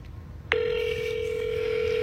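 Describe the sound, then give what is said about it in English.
A phone's electronic tone switches on after a brief pause and holds steady and unbroken, fairly loud, over a faint low background hum with no one talking, as a call is placed to the caller's father at 11:30 at night. “I'm going to call him. Okay, I'm going to call him now.”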